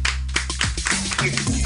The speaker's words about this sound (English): Everyone, let's have a nice round of applause